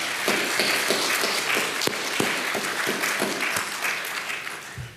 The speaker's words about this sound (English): And if you were here and you were not impressed, because you're not a spectator, but if you were impacted by that message, would you give God a round of applause, please?